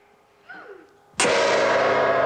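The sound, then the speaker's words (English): A gong is struck once with a sudden, loud crash that blooms into a sustained, shimmering roar lasting to the end, preceded by a faint, brief gliding tone. “The dramatic face on the gong.”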